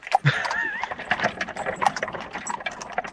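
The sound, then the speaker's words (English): Hooves of a horse pulling a carriage clip-clop in a steady run of sharp knocks, moderately loud, with a brief squeaky, whistle-like tone mixed in near the start. “And so this time we're going to take a horse and a carriage to Goofball Island.”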